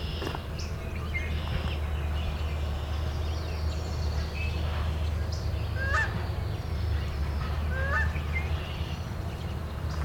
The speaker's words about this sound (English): Canada goose, it's picking up.